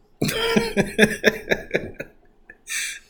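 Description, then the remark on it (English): A person coughs in a rapid fit of about seven harsh bursts, then draws a raspy, wheezing breath before another cough begins. “Hey, wake up and cough, you pray. You know, that you don't cough again.”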